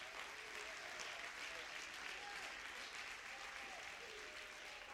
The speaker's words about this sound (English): Clap your hands if you believe it.